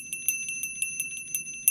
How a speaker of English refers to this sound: No, I'm going to ring it. I want Diana back. I'm going to ring the bell.